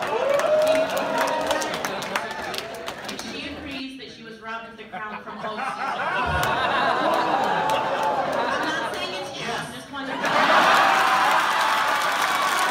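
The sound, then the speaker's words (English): A large audience roars with cheers and clapping, loud and sustained, reacting to Raven saying yes, she believed she was robbed; it dips briefly midway before swelling again into another burst of excited crowd noise. “And the crowd went crazy.”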